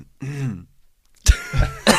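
A short voiced throat-clearing sound, then a pause and a burst of harsh, raspy coughing and throat clearing, fairly loud, with no talking.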